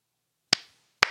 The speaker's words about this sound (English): It was only two claps. Was it two? Yeah.